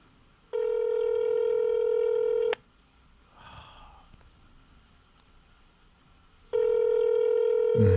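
A telephone rings electronically, two long steady buzzing tones a few seconds apart, with quiet rustling and faint background noise in the pause between them.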